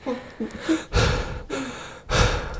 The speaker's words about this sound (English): Don't breathe into the microphone.